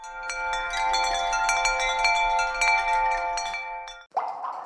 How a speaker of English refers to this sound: W is for wind chimes.